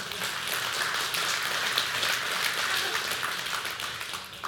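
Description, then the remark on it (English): A crowd breaks into steady, dense applause, many hands clapping at once at an even loudness for a few seconds, with no voices standing out above it. “You could clap for that.”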